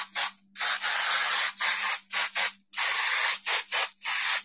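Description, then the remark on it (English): A lavender spray bottle is sprayed at a litter box, hissing in a rapid series of bursts, some long and some short, in an uneven stop-start rhythm. The spraying is fairly loud, with no talking. “I'll take the lavender one. Okay, let's see here. I'll back to the litter box. And let's just see what we can do here. And I'm going to spray a little bit.”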